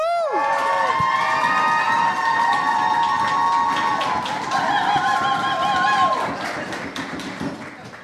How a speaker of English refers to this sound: So I want you clapping, cheering, stamping your feet. Please make a lot of noise for the first poet up this evening,